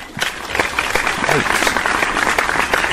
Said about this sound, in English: Insert golf clap.